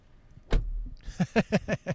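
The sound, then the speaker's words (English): A rental car door shuts with one solid thump, followed a moment later by a quick, even series of about six softer knocks. “You can say goodbye without the mic, so you could do the close the door.”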